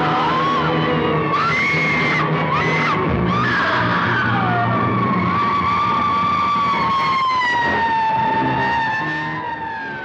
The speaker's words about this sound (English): And then as she's falling and screaming, her scream fades into the siren of like the fire trucks that are driving by. And so you never hear her stop screaming.